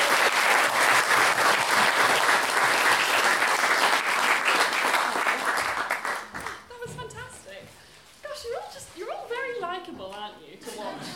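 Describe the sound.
Dense, steady applause from a sizable audience fills the first half, then dies away as a single voice starts talking clearly up close.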